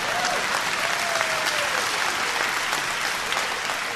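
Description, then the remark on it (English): During a sermon, a crowd claps loudly and steadily throughout after being asked who is thankful that God was patient with them, a dense wash of applause with a faint voice or tone gliding briefly underneath. “Some of you should have been clapping a lot louder than that.”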